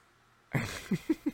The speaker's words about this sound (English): Can my dog shut up?